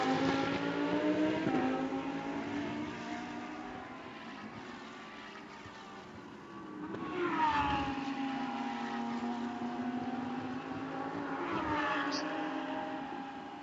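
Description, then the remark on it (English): High-revving race car engines whine past at speed as two cars come off the high-speed turn seven, their pitch swelling and dropping as the cars pass by, with one loud surge midway and another near the end. “These two cars, as I said, Middleton really seems to have it off that high speed turn seven.”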